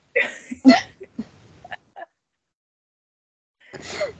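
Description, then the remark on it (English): A puppy snoring oddly: a string of short, irregular snorts and hiccup-like huffs, then a silent pause before a longer raspy breath at the end. No one talks. “He's snoring in a really weird way.”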